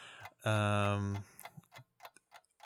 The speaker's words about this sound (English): I'm freaking out. I can't do it. The clock is in front of me.